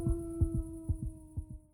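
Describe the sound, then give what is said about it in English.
A fast, pounding heartbeat thumps in close double beats, while a group of wolves howl all together in a long, steady, drawn-out wail behind it, coming closer. No one speaks. “Je n'entends plus que les battements de mon cœur et les loups.”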